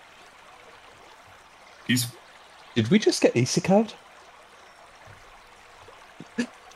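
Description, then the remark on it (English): A steady, gentle babble of a brook in a quiet forest runs continuously in the background, soft and constant, while people briefly speak over it. “Nothing but the babbling brook and the sound of the forest.”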